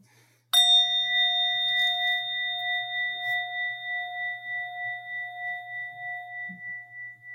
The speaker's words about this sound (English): But what I'll do is just ring this bell and invite us together in a bit of reflection.